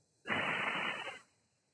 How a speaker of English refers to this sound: Just. Inhale. Hold. Hiss it out of the mouth again.